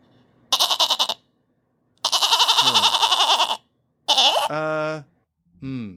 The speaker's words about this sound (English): Okay, that's another goat. That sound effect is called happy goat. Happy goat, rather than goat asking questions.